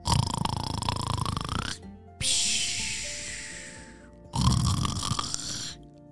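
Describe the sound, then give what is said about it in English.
A voice imitates a fish snoring with bubbles: two loud, rattling snore-like inhales separated by a long hissing, airy exhale, alone with no other talk. “Have you ever heard a fish snore? That's pretty silly. There's lots of bubbles involved.”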